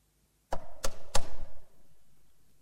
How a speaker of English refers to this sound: What would Mephibosheth have thought when he heard that knock? Who can this be?